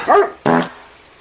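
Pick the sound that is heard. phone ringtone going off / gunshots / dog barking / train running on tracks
dog barking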